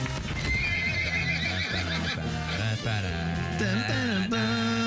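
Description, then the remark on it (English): Horses whinny loudly and almost continuously, wavering neighs overlapping one another while hooves clip-clop steadily underneath, with no one talking. “Those poor horses.”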